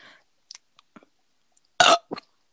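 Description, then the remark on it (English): A few faint mouth clicks and smacks, then one loud burp bursts out, followed immediately by a shorter, weaker burp-like gulp. “Now I was doing my burp for the day.”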